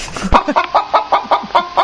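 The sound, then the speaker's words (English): A chicken-clucking sound effect: a rapid series of about nine short clucks in a steady rhythm, loud, with no talking over them. “That's you, Catherine. I'm not a chicken.”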